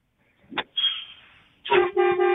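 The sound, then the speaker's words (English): A truck horn honks loudly, a brief rough tone followed by two strong, brassy blasts at the end, with no one talking. “Wait, why are you driving a truck, man? You in a truck?”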